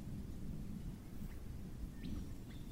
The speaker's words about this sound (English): And then the rain brings a healing touch of relief across a parched landscape.